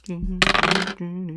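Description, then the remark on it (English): A quick burst of dice clattering and rattling across a hard surface for about half a second, loud, over a steady low humming tone that continues before and after; the roll comes up a 6 and a 1. “Let's get that roll.”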